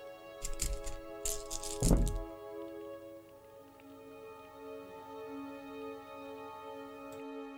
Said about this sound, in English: Let me roll his dice pool.